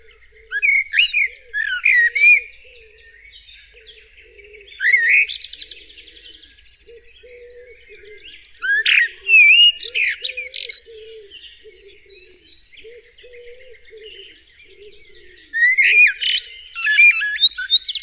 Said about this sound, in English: You can separate them because song thrush takes a phrase and repeats it 3 times, changes a phrase and repeats that 3 times.